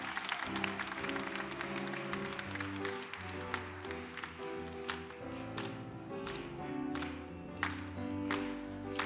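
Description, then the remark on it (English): An audience claps hands together in praise of the Lord in a steady rhythm over loud, sustained organ-like music, the clapping dense throughout. “Give him a good hand clap of praise.”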